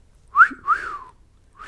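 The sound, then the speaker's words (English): A person whistles a two-part wolf-whistle, a rising swoop followed by a longer falling glide, imitating a bird whose call sounds like catcalling, with a third whistle starting at the end. “But but another one, there's a bird that goes, it sounds like it's, I don't know if it's cat calling, but like whistling, like.”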